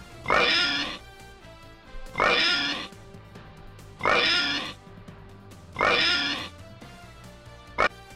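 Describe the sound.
A person imitates pig oinks in a judged oinking contest: four loud, drawn-out nasal squeals, evenly spaced, followed by a short sharp snort at the end. No talking.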